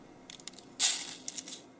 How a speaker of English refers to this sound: The collecting and pouring of the grinds into the filter.